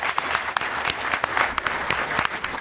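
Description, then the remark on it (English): An audience at a talk in Boston claps steadily for a few seconds for a teacher on the publishing faculty of Emerson College, a dense patter of many hands with sharper individual claps popping out, fairly loud and continuous with no voices on top. “Okay, so clap for the teacher, guys.”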